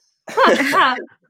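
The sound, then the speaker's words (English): A single voiced throat clearing, a two-part "ahem" with a rising then falling tone, fairly loud and alone, lasting just under a second before silence. “I really need to clear my throat.”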